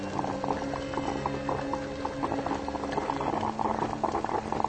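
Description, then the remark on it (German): A coffee machine hisses and gurgles steadily, a dense bubbling, boiling sound with faint clicks running through it, continuous for the whole stretch with no voices. “Was, du fauchst? Bestie. Willst du mir Angst machen? Bist doch eine gute Kaffeemaschine, nicht wahr?”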